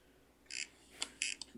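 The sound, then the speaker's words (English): A couch gives off four short, high-pitched squeaks in an uneven rhythm, the first and third drawn out a little longer, over a quiet background with no talking. “What is that squeaky noise? Oh, fuck. You know what's the couch, eh?”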